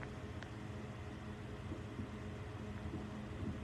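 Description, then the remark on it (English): On the night of July 4th, a steady, droning air conditioner hum with low tonal bands runs throughout, and a few faint, brief pops of fireworks barely break through it. No one speaks. “You can hear the air conditioner and the fireworks.”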